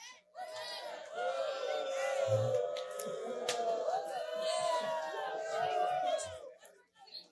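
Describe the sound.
A crowd of young voices at camp on its last night boos and jeers together, a dense, continuous wash of overlapping calls that holds steady for several seconds before fading out.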